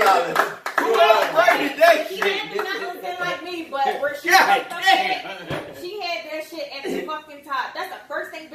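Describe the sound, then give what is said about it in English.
A round of applause for a hairstylist, steady clapping from several hands lasting several seconds, mixed with loud excited voices and cheering that ride over the claps throughout. “Round of applause for the hairstylist.”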